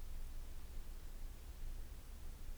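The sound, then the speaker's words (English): Rain patters on leaves in a forest in a soft, steady, even hiss with no clear individual drops and no voices, holding a constant low level throughout. “You can hear the rain pattering on the leaves.”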